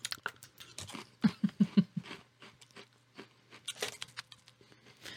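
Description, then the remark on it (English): Flamin' Hot Cheetos being chewed: irregular dry crackling bites, with a quick run of four sharp crunches early on and another busy burst later, fairly quiet, with no talking. “For all the podcasters that aren't watching the video, we're eating Flamin' Hot Cheetos.”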